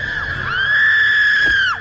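A woman lets out a loud, sustained high-pitched scream lasting nearly two seconds, steady in pitch before trailing off abruptly at the end, with faint background noise underneath.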